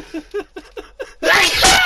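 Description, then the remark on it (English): A few short, rhythmic breathy vocal bursts build up before a loud sneeze explodes and trails off with a rough, airy hiss. “I'm sneezing, that idea was so good.”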